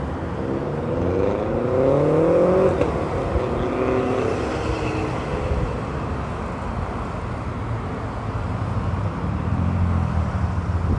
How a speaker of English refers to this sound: Ooh, here comes a motorcycle.